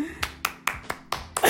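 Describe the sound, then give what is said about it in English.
Hands clap in a quick, steady rhythm, about seven sharp claps, with the last burst growing louder and fuller like brief applause. “Baby steps deserve an applause.”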